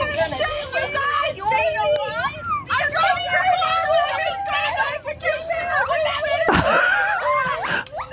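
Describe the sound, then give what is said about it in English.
Continuous shrill, wavering screams and chattering calls from a monkey, pitch sliding up and down in rapid bursts, loud, with a couple of sharp noisy bursts near the end. “So these are the girls, and then someone put a monkey down there just screaming.”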